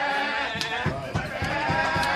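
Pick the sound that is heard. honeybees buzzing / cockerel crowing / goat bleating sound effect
goat bleating sound effect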